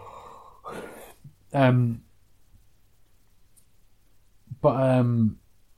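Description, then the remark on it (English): A person yawns twice, each yawn a short voiced groan with falling pitch, the first preceded by a breathy inhale, separated by a few seconds of quiet. “I keep yawning. I'm so sorry.”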